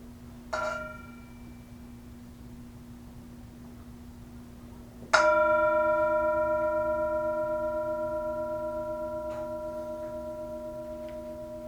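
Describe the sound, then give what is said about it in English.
A Tibetan singing bowl, used as a mindfulness bell, is struck twice: a light tap, then a full ring whose steady, shimmering overtones sustain and slowly fade over several seconds, heard alone. “As always, we have the Tibetan singing bowl, the mindfulness bell.”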